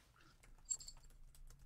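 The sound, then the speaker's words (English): A quick flurry of small, faint metallic clicks and rattles as three coins are picked up, shaken together and tossed again to cast a line, with no one speaking. “Pick them up and do it again.”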